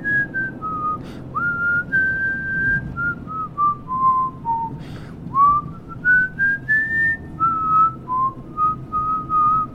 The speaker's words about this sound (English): The video starts with me whistling, "I love to see the temple."